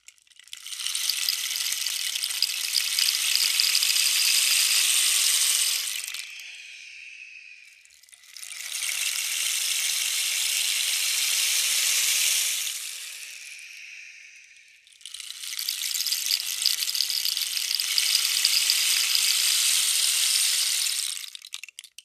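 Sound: rain stick being turned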